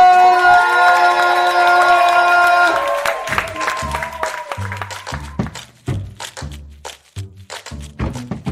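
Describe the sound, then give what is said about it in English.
An audience at a brunch show applauds and cheers loudly for the closing performer, a dense clatter of clapping that rises over sustained musical tones and then continues alongside a steady thumping beat, gradually thinning out. “Give it up nice and loud”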